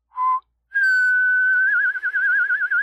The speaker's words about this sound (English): All right, fine, but the whistling horse stays.